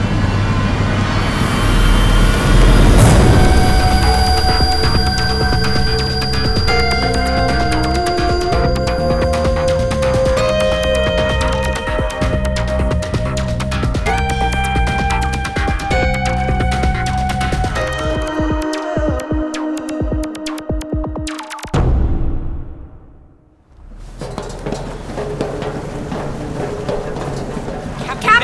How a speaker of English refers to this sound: What's all the commotion? The boat is moving. That's what boats do. But it's the middle of the night.